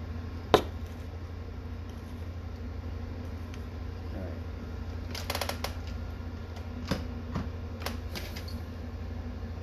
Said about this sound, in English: Okay, so I'm going to shuffle my Thoth deck for a moment.